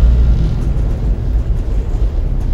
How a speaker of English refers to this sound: Ignition sequence start. 7, 6, 5, 4, 3, 2, 1, 0. Boost ignition. All engines running.